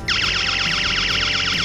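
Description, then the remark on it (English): A loud electronic test alarm connected during an underfloor heating mat installation sounds continuously, its shrill tone warbling rapidly up and down in quick repeated cycles, with no talking over it; it sounds when the blue heat wire is damaged during installation. “If the blue wire is damaged during installation, the alarm will sound.”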